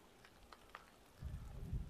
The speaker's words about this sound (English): Have you heard the rain increasing? I'm going to leave this recording a little wet.